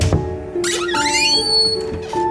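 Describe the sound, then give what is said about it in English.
A door creaks slowly open with a long, high, wavering squeal, loud, starting with a soft knock and settling into a drawn-out tonal groan, in the National Edgar Allan Poe Theater on the Air radio production of The Fall of the House of Usher. “Now allow me to open the door.”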